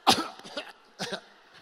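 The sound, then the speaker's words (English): A short fit of harsh coughing after taking a hit: a strong first cough, then a softer one, and a double cough about a second in, with no talking. “Back then, I could hit it without coughing.”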